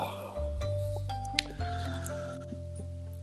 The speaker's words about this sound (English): I was burping. I'm sorry.